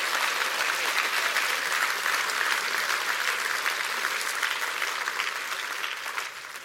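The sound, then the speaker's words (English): An audience applauds with dense, sustained clapping that holds steady for several seconds, then begins to taper slightly at the end. No one speaks over it. “Can you clap your hands for that right now?”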